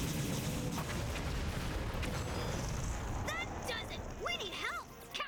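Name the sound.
explosions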